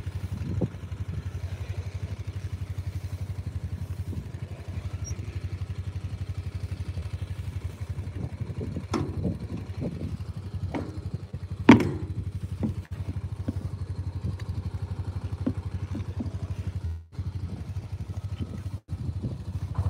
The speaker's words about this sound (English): Best engine in the world, that right there. Nothing compares. When you buy a Honda engine, insist on the red engine with a white metal fuel tank. That's the good one.